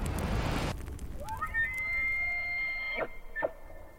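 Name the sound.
elk bugling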